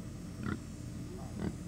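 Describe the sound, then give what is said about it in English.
Pigs oink twice on a farm in Dublin, two short grunting snorts about a second apart, over a low rumble of outdoor background noise. “Comfort Farms is ripe with everything from okra and tomatoes to chickens and pigs.”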